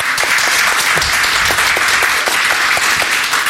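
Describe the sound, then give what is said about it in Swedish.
An audience at the Historiska museet applauds steadily, a dense, continuous wash of many hands clapping at an even loudness for the whole stretch, with no voices rising above it. “och det har faktiskt kommit en ganska stor publik här på Historiska museet, så en applåd för publiken.”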